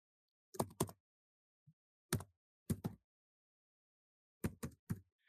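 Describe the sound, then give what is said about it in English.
Heavy, clumsy typing on a computer keyboard: loud keystrokes land in irregular clusters of two or three, separated by short silent pauses, with no talking. “but I left the typing in because I've said this before, but his typing sounds cartoonishly like if you were writing a cartoon and you needed, you know, big dumb oaf typing.”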